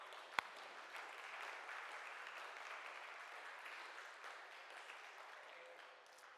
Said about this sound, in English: Remind me that our God is the greater one. Let's clap for that.